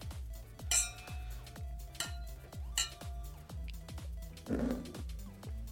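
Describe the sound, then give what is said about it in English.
Beer glasses clink together in a toast, a few bright, sharp taps spaced apart, over a steady, rhythmic low thumping in the background. “Cheers. Cheers.”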